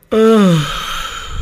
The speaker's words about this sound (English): Oh, man. Definitely getting your yawning in right now with that. Just the talk of yawning.